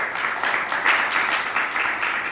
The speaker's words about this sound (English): A firm handshake and a round of applause.